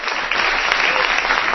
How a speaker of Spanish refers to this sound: ¿Quiere dar palmas? Dele palmas, son de Cristo, son para Él.